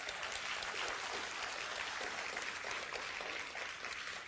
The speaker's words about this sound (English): And part of what them sharing in front of you this morning is part of their recovery journey. So give them a round of applause this morning.